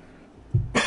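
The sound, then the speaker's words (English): A single cough: a low, throaty burst followed by a harsh, breathy expulsion, loud and sudden against a quiet background with no talking. “Excuse me, folks. I apologize. There's the cough button.”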